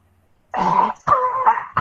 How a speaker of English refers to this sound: Cough up blood.